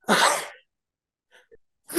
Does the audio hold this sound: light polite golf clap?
no